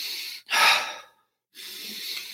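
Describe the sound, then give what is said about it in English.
Audible connected breathing with no talking, in through the nose and out through the mouth with no pause at the top or bottom: a drawn-in breath, then a stronger, airy exhale that fades, a brief silence, and another long inhale. “So meaning moving the breath in a pattern where there's not really a pause at the top or the bottom, breathing in through the nose and out through the mouth.”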